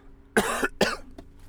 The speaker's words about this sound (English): Sorry that I'm coughing, guys. I don't know why. I'm gonna get some fucking water.